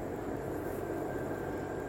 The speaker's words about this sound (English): Like, that helicopter, I think it's a helicopter, it's loud because, you know, blades are keeping it elevated in the air.